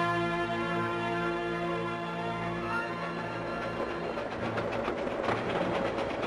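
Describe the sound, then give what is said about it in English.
A train rolls steadily along the rails through idyllic countryside, with a continuous low rumble and rhythmic clattering of wheels growing a little busier toward the end; no voices are heard. It is a scene from a Michael Powell film, with a passenger seated in an open carriage. “We then cut to Sam Higgins, seated in an open carriage of a train that's making its way through some idyllic countryside.”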